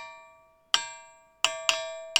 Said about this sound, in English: I was expecting a stronger sound out of something called the Ringing Rocks. Oh, me too. Eventually, I did get some better sounds. I think it's just about finding the right rock.